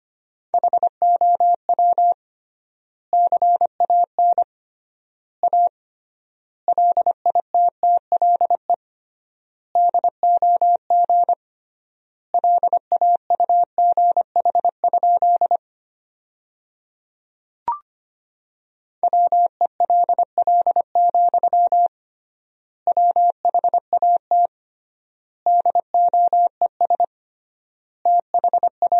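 Morse code tones at 25 words per minute with triple word spacing, sending sentences built from the top 500 words: a single steady mid-pitched beep keyed into rapid dots and dashes, sent in bursts with wide pauses between words, plus one brief click midway.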